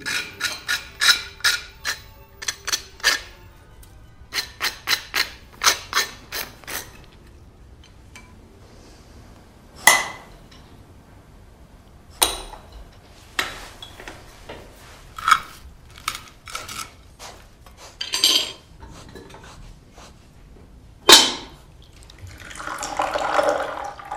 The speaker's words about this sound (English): She is just incredibly loud with everything, from the scraping of the butter to the pouring of the coffee and water and the everything.